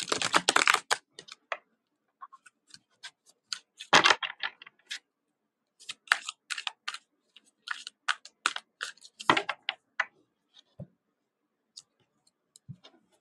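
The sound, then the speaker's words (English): Tarot cards are shuffled: a dense, crisp riffle burst at the start, then a scattering of light taps and snaps as the deck is squared and handled, with no talking. “Okay, one more shuffle.”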